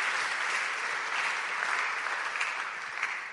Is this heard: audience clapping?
yes